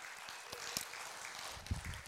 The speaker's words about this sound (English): So God made all this happen in 2018. Can we just give a round of applause for that? That's awesome.